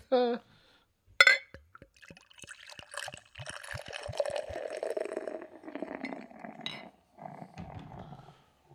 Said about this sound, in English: We have this beer poured out.